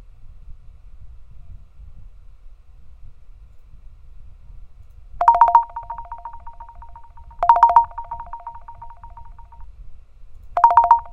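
A phone ringtone plays three times against a quiet, low rumbling background, each ring a bright electronic burst with a lingering tone, spaced a few seconds apart.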